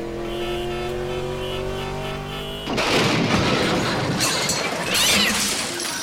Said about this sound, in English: Attempting record count of car pileup. Please locate potential crash area. I see one right ahead. Target sighted. Initiating.